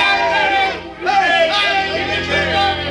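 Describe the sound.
A crowd cheers wildly in a castle courtyard, many voices shouting together in a loud, continuous roar that dips briefly and then swells again.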